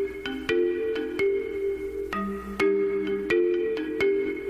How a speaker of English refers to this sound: that was the theme song from American Beauty